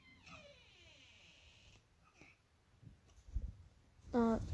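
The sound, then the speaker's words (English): A domestic cat meows, first a drawn-out, falling cry, then after some soft bumps and rustling a sharper, louder meow at the very end. “I just paused the show because I thought my parents walked in, but it turns out it was my cat.”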